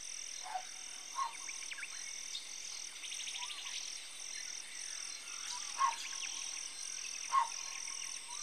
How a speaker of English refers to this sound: I call this one, I Saw It in the Jungle, because the sound of that bird is done with a saw.